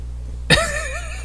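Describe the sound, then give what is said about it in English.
A single muffled sneeze, stifled to keep it off a microphone: a sudden sharp burst of breath followed by a brief, wavering voiced tail that fades out, over a low steady hum. “watching you try not to sneeze into the microphone.”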